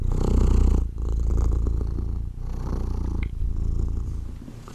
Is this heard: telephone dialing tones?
no